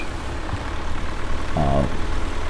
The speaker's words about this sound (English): Also beeping the horn as I pull in.